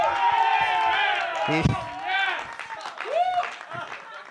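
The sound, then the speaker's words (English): A loud, dense burst of overlapping voices shouting and cheering at once during a game of Assassin, with rising and falling whoops and yells filling the whole stretch without a pause. “They're only cheering so loudly because of how terrified they were that he was in the game.”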